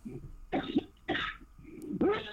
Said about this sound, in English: Get out. Cough them out. Cough them out. Cough them out.